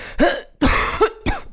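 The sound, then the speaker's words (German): A series of about four harsh, raspy coughs in quick succession from a woman with a phlegmy cough of three days, fairly loud, with no talking. “Husten, okay.”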